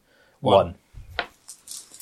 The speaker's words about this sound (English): An unexpected event occurs. Roll 2 dice, 1 after the other. Treat the first dice as 10s and the second as units.